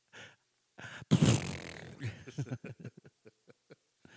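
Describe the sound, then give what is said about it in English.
A loud, raspy fart bursts out, then trails off into a series of short sputtering pops that grow sparser and quieter, with no talking over it. “Stop farting too.”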